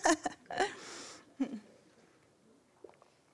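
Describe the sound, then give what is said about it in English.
Someone takes a quick sip of water: a few soft wet mouth clicks and a breathy slurp, then a gulp-like swallow, trailing off into near silence. “And so, speaking of no water, I need a sip of water.”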